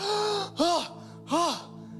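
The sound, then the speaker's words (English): Two sharp, voiced gasps for breath in quick succession, fairly loud, each a strained, rising-then-falling intake of air, separated by a short pause with no other talking. “But you get to the tunnel and like your first breath, it's like you're gasping.”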